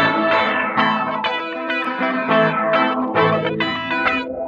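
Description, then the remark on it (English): An electric guitar, sent to a bus track with the Sweep Reverb 2 preset, plays a string of sustained chords drenched in a washy, sweeping reverb that swells and shimmers, with no one talking. “And Sweep Reverb 2.”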